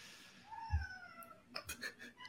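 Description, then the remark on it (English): A cat meows in the background, a drawn-out cry with rising harmonics followed by a few shorter, choppier meows, fairly faint against a low thump and room noise. “Can you guys hear the cat in the background?”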